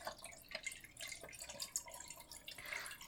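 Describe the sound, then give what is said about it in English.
Film developer liquid poured steadily into a film developing tank, a soft continuous splashing trickle with small fluctuations, fairly quiet, with no voices. “So, okay, I'm pouring in.”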